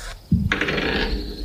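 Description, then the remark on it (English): Dice rolling across a hard tabletop for an intimidate roll, a fairly loud rattling clatter that starts abruptly and tumbles on for about a second without settling, with no voices over it. “you really need a dice tray.”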